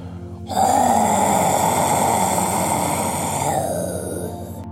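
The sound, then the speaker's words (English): A Tyrannosaurus rex roar bursts in after a brief low rumble as it runs straight toward a tour bus with its mouth wide open, one long, loud, gravelly growl with deep rumbling undertones that holds for about four seconds before easing off slightly. “When they look out the front of the bus, they see a Tyrannosaurus Rex running straight for them with its mouth wide open, big enough to just about swallow the bus.”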